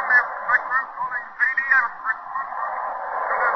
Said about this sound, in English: and now our technician tells us those ghost voices are back and that the signals are clearing up a bit, so let's listen. We're not sure yet. It may be nothing but those strange patterns of static coming in from the Western Ocean.